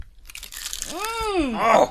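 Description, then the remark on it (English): A bite into a crunchy, spicy chip gives a burst of crackling crunches, followed by a voiced, sliding hum of approval and more crunching chews toward the end. “Here comes … now, taking a bite of her spicy.”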